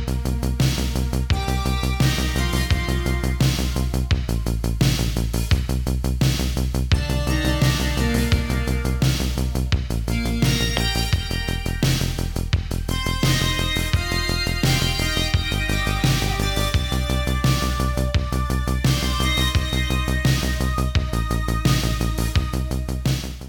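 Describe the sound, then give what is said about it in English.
Loud, full-band theme music plays steadily with a thumping bass line and bright layered instruments, driving rhythm throughout and no voices. “Hit the music.”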